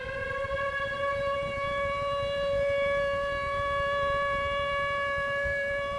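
A loud, steady siren wail holds a sustained harmonic tone over the dense, booming low-end rumble of a bass-boosted 1992 music recording that pulses continuously beneath it, with no voices present.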